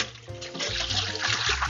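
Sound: water running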